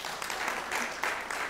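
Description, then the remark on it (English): A church audience claps steadily for the music team and sound people, a dense wash of many hands with no clear individual beats, holding an even loudness throughout the short stretch. “Sure, clap for them.”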